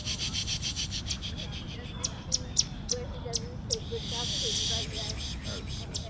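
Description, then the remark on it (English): Sharp, high bird chips repeat in a quick series, broken by a brief buzzy trill, as bird calls are played through a speaker or imitated by voice to draw birds out during a group bird walk in Central Park, over a low outdoor rumble. “As the group walks through Central Park, DeCanado plays bird sounds through a speaker.”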